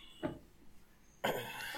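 A brief puff of breath, then a sudden, loud, breathy sneeze that bursts out and trails off in a noisy rush. No one speaks.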